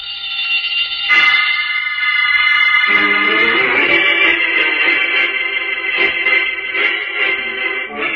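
A burglar alarm, just set off, rings loudly and continuously for the whole stretch, a harsh, steady electronic clang with a slight shift in tone partway through, with no voices.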